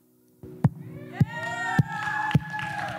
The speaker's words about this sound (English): You can clap better than that, guys. It should be exciting.